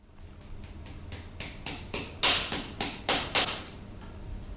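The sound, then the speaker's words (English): A blacksmith hammering nails into a horseshoe while shoeing horses for the Metropolitan Police at Hammersmith, London: a steady run of about a dozen sharp, ringing taps that grow louder midway, then fade over a low hum, with no talking. “But ironically, he's doing so here in London, where he shoes horses for the Metropolitan Police at Hammersmith.”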